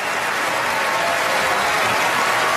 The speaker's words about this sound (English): And I'm playing now. Here we go. Hold on. Wait for it. I'll bring it up. He's getting applause.